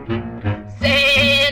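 A goat bleats: two short, wavering calls followed by a longer, louder, strained bleat, with no talking around it.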